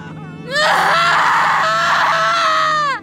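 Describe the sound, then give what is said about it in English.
Piercing, sustained screaming from two voices raised together, a mother and her child, loud, starting abruptly and holding for about two and a half seconds before breaking off, with no talking, as the mother is attacked by a creature. “I held my mother as she screamed, and I screamed with her.”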